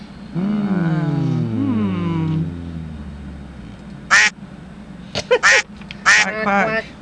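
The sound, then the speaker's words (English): A duck gives a long, drawn-out nasal quack that slides downward in pitch, followed after a pause by a few short, sharp quacks in quick bursts, fairly loud. “Duck doesn't work?”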